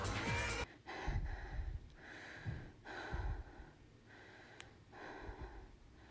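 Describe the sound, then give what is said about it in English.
Heavy, ragged panting after physical exertion, a steady rhythm of loud breaths in and out, roughly one per second, with no talking. “I was panting heavily, like I was finishing a race or something like that.”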